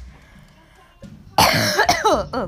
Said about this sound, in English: Oh, I just coughed.